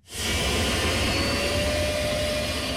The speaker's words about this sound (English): That's not a jet plane, but a gas turbine-powered 1963 Chrysler turbine car. Only three running examples of the bronze two-doors are in existence